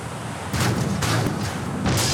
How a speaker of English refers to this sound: Okay, there's no way that go-kart could have made that big of an explosion. That's what I've been saying, little go-kart that could over here.